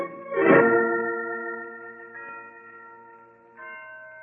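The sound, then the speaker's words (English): The historic Blandford bells ring from a bell tower: a large bell tolls with a strong strike and long ringing decay, followed by softer overlapping bell strikes around two and three and a half seconds, sounding resonant. “They've been ringing from that bell tower for 3 centuries.”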